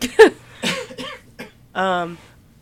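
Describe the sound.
A sharp, close cough bursts out at the start, followed by a few smaller raspy throat sounds and a short voiced hum, with brief quiet gaps between them.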